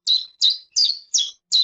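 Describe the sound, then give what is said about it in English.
A chiffchaff song of five sharp, high-pitched chirps repeated at an even, steady pace, loud and clear with no voices; the first second is a real recording and the rest is AI-generated. “So somewhere in the third sheep, AI takes over and starts to speak chiff-chaff.”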